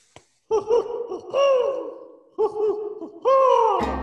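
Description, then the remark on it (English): A voice imitates an owl, giving four drawn-out, wavering hoots that slide downward in pitch, fairly loud and with short pauses between them. “Make sure you watch your head there. Here comes that owl.”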